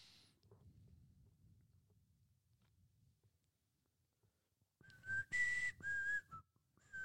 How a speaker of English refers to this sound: I wish I could whistle. I can barely whistle, so it's kind of sad.